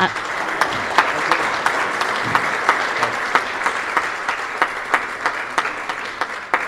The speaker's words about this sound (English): So I think he deserves a huge round of applause.